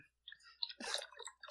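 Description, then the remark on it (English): Someone gulps a drink from a bottle, with wet mouth clicks and a short burst of sloshing swallows, no one talking. “I spend a lot of time chugging the bottle.”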